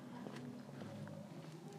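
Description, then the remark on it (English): Quiet footsteps of someone walking around an estate on a Friday night, a handful of soft, evenly spaced steps over a low, steady background rumble, with no one speaking. “Now I'm walking around the estate.”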